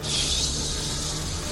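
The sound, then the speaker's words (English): Steady black rain pours down over a square, a dense, even hiss of drops pattering on a rooftop with no pauses or individual impacts standing out, continuing at a constant level throughout with no voices. “And black rain coats the square and patters along the rooftop.”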